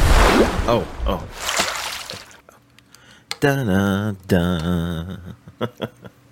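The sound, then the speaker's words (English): Morning coffee, Carlo's Bake Shop Hazelnut Biscotti, pours with a splashy, hissing rush for a couple of seconds, followed by drawn-out vocal sounds and a few short slurping sips. “First, let's get that morning coffee going.”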